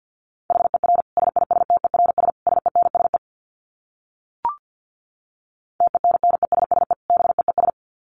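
Rapid Morse code sent as a steady mid-pitched beeping tone at about 50 words per minute, in two bursts of quick dits and dahs separated by a pause broken by a single short click.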